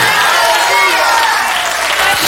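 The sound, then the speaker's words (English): An audience claps hands together in a loud, dense, steady burst of applause as praise and thanksgiving to God during a sermon, with voices calling out beneath the continuous clatter for a couple of seconds. “Give God a hand clap of praise and thanksgiving.”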